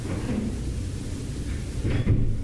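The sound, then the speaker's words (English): A room door in one wing of a single-floor facility swings shut with a dull, muffled thud partway through, set against a steady low rumble of background noise. The closing sounds somewhat echoey. “I mean, that is, I can tell by hearing it, one of the room doors closes.”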